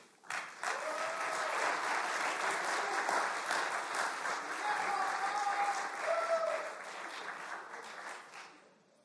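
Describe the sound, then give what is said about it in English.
At a senior class graduation ceremony, a crowd bursts into sustained applause for the faculty members as they come forward, a dense wash of clapping that stays loud and steady for several seconds, with scattered cheers and whoops rising above it before it starts to thin out. “And again, as they approach and come forward, be sure to cheer for them and thank them for all that they've done in your life.”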